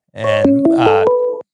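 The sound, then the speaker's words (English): A phone tone cuts in: a loud, steady electronic tone stepping through several pitches over about a second, then stopping abruptly, with no talking during it. “Was that your phone or mine?”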